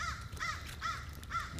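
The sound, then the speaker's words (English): A crow caws four times in a quick, even rhythm, each call harsh and raspy, heard clearly over a low background rumble with no talking. “Crow.”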